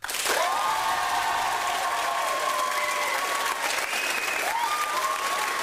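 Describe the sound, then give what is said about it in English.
A crowd votes by applause for the idea most deserving of a trophy, such as The Conveyor Duvet, applauding steadily and loudly for several seconds, with dense continuous clapping, sustained high whistles and a few cheers rising over it. “By applause, ladies and gentlemen.”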